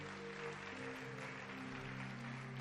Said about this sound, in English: Give Jesus a mighty clap offering.